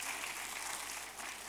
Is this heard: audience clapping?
yes